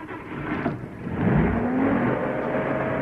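A heavy lorry engine revs up, its pitch climbing steadily as it pulls away, a loud continuous rumbling roar with no voices.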